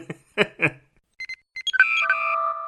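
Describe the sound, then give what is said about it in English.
A brief voice at the start, then a big pocket clock's alarm goes off: a few short electronic beeps build into a loud, steady ringing tone that keeps sounding. “It's most definitely a clock.”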